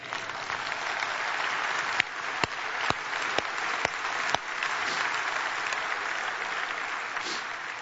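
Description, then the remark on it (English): An audience at a church service breaks into sustained applause after the preacher says he is now clothed in the righteousness of Jesus: a dense steady wash of clapping with a few sharp, louder claps standing out, and no speech over it. “And that you can clap to.”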